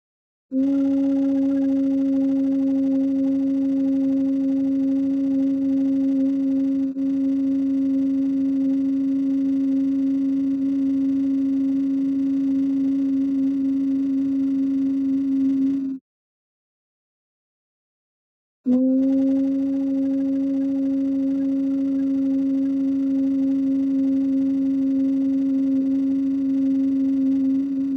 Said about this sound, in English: So you should be humming right along with me.